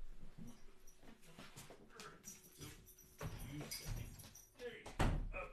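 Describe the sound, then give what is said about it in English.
Dogs shuffle and stir amid muffled talking and movement as the older dogs are put outside, then a door closes with a solid thud near the end. “So I'm going to kick the dogs out.”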